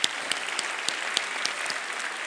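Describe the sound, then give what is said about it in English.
An audience claps steadily, giving a big hand to the people ready to upload their testimony videos on the app, dense overlapping handclaps forming a continuous wash of applause with a few sharper claps standing out, no voices heard. “Let's give all those people a big hand.”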